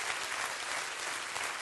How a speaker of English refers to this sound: Clap your hands and rejoice right now.